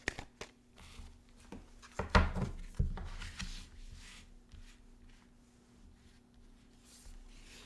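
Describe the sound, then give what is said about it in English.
A Work Your Light oracle card deck is shuffled vigorously, with crisp riffling bursts and sharp taps, loudest in the middle and trailing into softer rustling. No one speaks. “I'm going to heavily shuffle again.”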